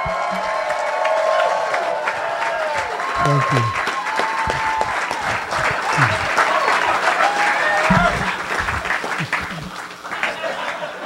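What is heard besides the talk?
audience applause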